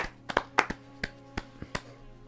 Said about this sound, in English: I stand up and clap. Stand Huzzah. Up. Give a standing ovation. Bravo! Bravo!